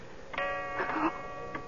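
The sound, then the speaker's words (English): A clock ticks a few times at an uneven pace as its hands reach eleven o'clock, each tick ringing with a faint metallic hum. The sound is moderately loud, with no talking. “The hands of the clock had touched 11.”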